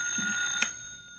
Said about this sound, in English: That's the telephone.